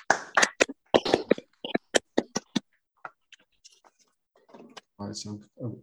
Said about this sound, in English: Now it's time for the always unsatisfactory round of applause for our speaker on Zoom, but let's give it a go anyway.